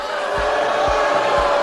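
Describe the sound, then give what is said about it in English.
A crowd at a Trump rally booing the Green New Deal in a loud, steady, continuous din, with low thuds pulsing about every half second underneath. No single voice stands out. “If you knew nothing else about the Green New Deal, you now know that everyone's talking about it and it was booed at a Trump rally.”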